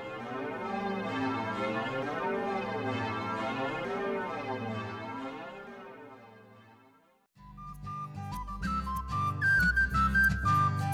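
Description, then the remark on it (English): Wavering, shimmering chimes of old bells lying on the ocean bed blur together in a watery, underwater-sounding wash as currents flow around them, slowly fading, followed by a burst of brighter, steady electronic tones. No one speaks. “As for the old bells, they settled down on the bed of the ocean, and to this day, as the currents flow around them, there are times when you can still hear their watery chimes.”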